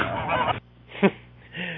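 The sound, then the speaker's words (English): Geese, given as a 12 days of Christmas gift, honking: a long, harsh burst of honks, then a single short, sharp honk and one more drawn-out call, loud and with no talking. “Is it my fault that the first 8 days is basically 30 birds?”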